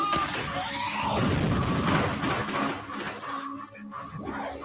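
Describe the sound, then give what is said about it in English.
A loud, cinematic explosion from a movie, with a deep booming rumble and crashing debris that roars for several seconds before thinning out, with no voices. “Wait for that explosion.”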